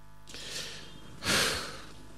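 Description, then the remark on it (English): A voice imitates a runner's heavy panting at the end of a race: two loud, breathy huffs, the second stronger than the first, with no speech. “When they end the race, they are panting.”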